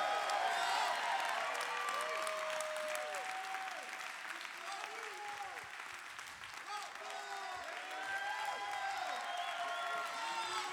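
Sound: audience clapping and shouting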